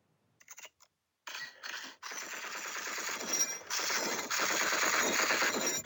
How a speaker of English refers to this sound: I know that's supposed to be like machine gun fire, but it kind of sounds like a crazy typewriter.